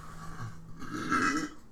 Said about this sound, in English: Nice burp.